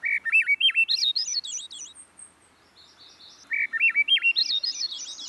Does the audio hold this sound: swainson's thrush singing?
yes